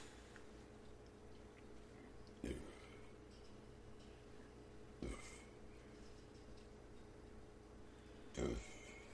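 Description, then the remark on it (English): Three short, low burps after drinking beer, spaced a few seconds apart, each a brief guttural croak, rising over a quiet, steady background hum with no talking. “Got those beer burps?”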